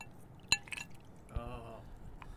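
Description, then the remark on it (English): A sharp clink of glass, then a short burst of 12-year-old Macallan whisky pouring from a bottle into a glass on a patio, with rising gurgling tones, quiet, followed by a faint drip or tap. “And he's pouring a glass here.”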